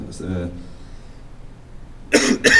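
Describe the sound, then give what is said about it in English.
A brief vocal sound at the start, then a quiet pause, followed by two sharp coughs in quick succession near the end. “We need a cough button.”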